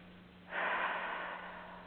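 A single long, deep breath rushes in, a soft airy hiss that swells quickly and then slowly tapers, taken as part of a deep-breathing relaxation exercise. Nobody speaks.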